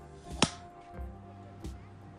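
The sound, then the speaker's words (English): A single sharp, loud film slate clap, Clap 6, marked by documentary filmmaker Bob Drew, cracks out early, followed a second later by a much fainter tap, over a low steady background hum with no talking. “Okay, this is Bob Drew, Clap 6.”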